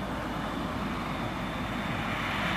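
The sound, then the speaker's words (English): An airplane engine drones in a steady, broad roar that holds at the same loudness for a few seconds as it flies past, with no voices over it. “The monkey jumped on the airplane and flew by the duck.”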